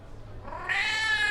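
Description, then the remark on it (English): A cat lets out a single drawn-out meow, rising into a bright, strained cry that holds steady until the end, fairly loud with no talking. “Damn cat.”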